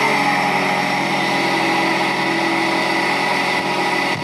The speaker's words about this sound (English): Listen to this. Nothing like this sound. I'm going to listen. Marine toilets are super noisy and horrible. Listen.